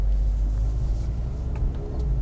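A sports car with an 8-speed automatic transmission and active exhaust idles with a deep, steady exhaust rumble, loud, with faint higher crackles flickering over the low drone throughout.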